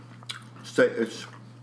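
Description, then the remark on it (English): Chewing on a crunchy organic protein bar with almonds: a quick crisp bite, then a louder cluster of crunching and soft mouth sounds over a steady low hum. “I like that almond crunch in there.”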